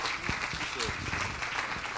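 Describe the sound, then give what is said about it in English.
A standing crowd claps steadily to welcome a guest speaker, a dense wash of many hands applauding together, with a few scattered voices mixed into the ovation. “Would you stand up and just give him a hand clap?”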